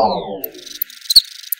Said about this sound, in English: That's a cricket love song. Male crickets rub their legs together to produce the chirp in a bid to lure females.